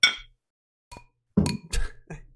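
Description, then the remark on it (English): Real drinking glasses clink together in a toast: a bright ringing tap first, then a few duller, clattering knocks in quick succession, with no one speaking. “Our glasses don't sound the best. They're not the best sounding glasses we've ever had here.”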